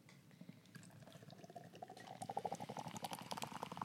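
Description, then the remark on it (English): A lime wit beer with tangerine from Market Garden Brewery is poured into a glass: a steady, fizzy rush of liquid that grows louder and gurglier about halfway through, its pitch creeping upward as the glass fills. “It's gonna spill. It's a good pour.”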